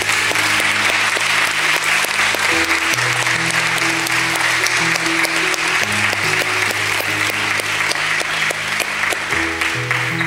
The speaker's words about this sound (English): Can we applaud those that gave their lives to Jesus this morning?